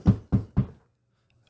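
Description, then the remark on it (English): Three firm, evenly spaced knocks on a door, loud, done as a live sound effect, followed by a short silence before another knock begins at the very end. “Somebody's at the door.”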